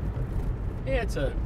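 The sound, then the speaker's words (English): Steady low rumble of road noise inside a moving car, constant throughout, with a brief voice sounding over it near the end. “I really like driving this car.”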